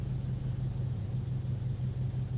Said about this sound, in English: When do you think the toxins from the tailpipe of that truck are going to reach my window over here?